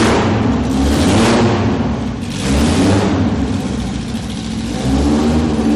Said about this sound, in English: Right, we'll move on out, but that's a wonderful sound. Lotus F1 car from, I guess from the 60s, you reckon, …? Yeah, it's a 60s Formula car. Could be a Formula 2 or Formula 3. Making a lot of noise.